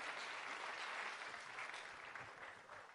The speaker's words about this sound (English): All right, let's give a round of applause, son, of what God is doing in this house.